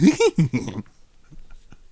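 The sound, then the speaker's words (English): A person imitates a dog with three or four quick, loud, throaty barking bursts, then falls quiet apart from a few faint clicks and breaths. “That's right, doggy. I'm a dog.”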